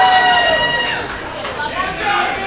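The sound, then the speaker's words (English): A wrestling crowd cheers and shouts steadily for a wrestler at his first match, a dense wash of voices with a few higher yells rising and falling above the noise throughout. “He asked the audience to cheer for him now.”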